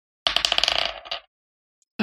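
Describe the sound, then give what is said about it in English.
A rapid clatter of dice, rolled for a luck check, tumbling across a hard table, a dense burst of bright clicks for about a second that slows and settles, then silence before a new sound begins. “Roll a luck check. Luck check? Let's let the dice decide.”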